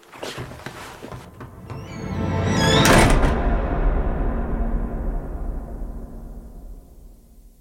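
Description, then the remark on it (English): A man goes out through a door: a few light clicks, then the door swings and shuts with a loud, full-bodied thud whose rumble slowly fades away. No one speaks. “He pulled on his coat, stuffed something in his pocket, and he was out of the door.”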